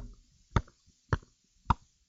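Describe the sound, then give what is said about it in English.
Three sharp, evenly spaced pops, each a short bright burst, like a mouth imitating a champagne cork popping. Nothing else sounds between them. “Sound like they're opening up a champagne bottle.”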